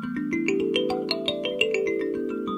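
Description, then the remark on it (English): A more standard type of thumb piano plays a quick run of plucked metallic notes, each ringing on and overlapping the next as the melody steps upward, bright and steady with no voices. “And what is the market for thumb pianos like?”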